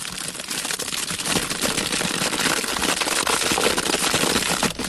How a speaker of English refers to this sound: Hey, it's when you put your hand in the crisp packet and all the rustling noise. Yeah, it's a big, deep bag of crisps as well.